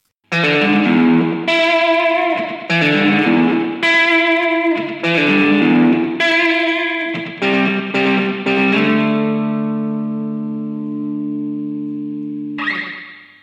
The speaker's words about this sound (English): Maybe just listen to this bit of twangy guitar and then switch it off.